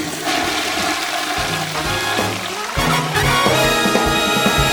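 A toilet flushes with a loud, steady rush of water that surges stronger about halfway through and keeps gushing to the end, with no voices.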